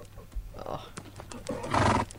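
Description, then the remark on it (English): RML's thoroughbred horse Sadie whinnies, a loud, shrill neigh swelling near the end after a few short snorts and shuffling clicks, with a low steady hum underneath. “Horses for Courses is a fun game that will take the decision out of their hands and into the hoofs of RML's beautiful thoroughbred horse, Sadie.”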